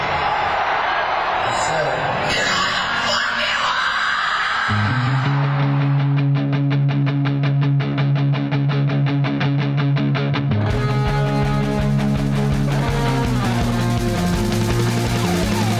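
A rock theme song opens with a noisy, distorted wash, then a heavy bass riff locks in with a steady driving drum beat before the full band surges in louder near the end.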